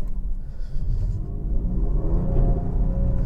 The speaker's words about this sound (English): We're gonna go do a little bit of brake testing, snow tire testing before we start out. So we've got this lovely, fresh, fluffy snow that just gonna test my snow tires out on, and my anti-lock brakes, everything's dried, stopping straight.